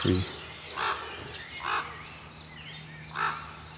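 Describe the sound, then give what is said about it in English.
Three ravens sitting on a branch by a forestry path in the morning call to each other three times at uneven intervals, harsh throaty croaks standing out clearly against faint high chirping of smaller birds in the background. “Three ravens. All sitting on a branch, talking to each other.”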